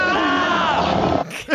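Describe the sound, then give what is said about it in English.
A single drawn-out human scream used as a sound cue for the characters Kremoff and Rampart as Cobra Commander sets a giant polar bear on them: loud and strained, holding for over a second with a wavering, slightly falling pitch, then cutting off into a short rising yelp at the end. “so I really like this sound cue as well.”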